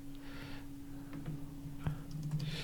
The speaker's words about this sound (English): Are you typing in stay cheesy, keep it greasy into the language translator?